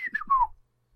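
sound effect, whistle sound effect

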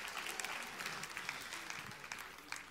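crowd, audience round of applause

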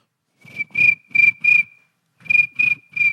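insect, crickets chirping sound effect

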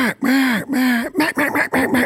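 tool, duck call blown

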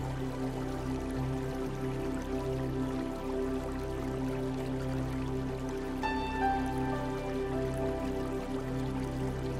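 nature, water flowing

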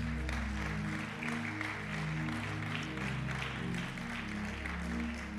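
crowd, audience clapping hands

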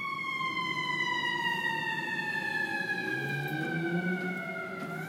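vehicle, fire truck siren wailing

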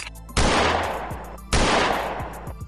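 sound effect, gunshots

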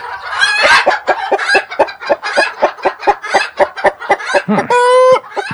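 bird, chickens clucking

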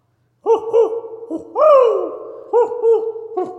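bird, owl hoot sound effect

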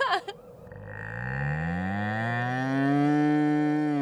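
animal, cow mooing

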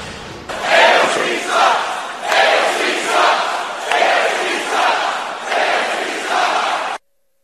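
crowd, rally crowd chanting

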